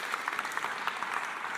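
A crowd claps steadily for a band, a dense patter of many hands blending into a continuous wash of applause with no voices, sustained at an even, moderate level throughout.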